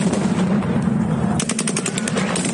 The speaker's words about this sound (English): The Russians returned, dispersing the crowds with live rounds.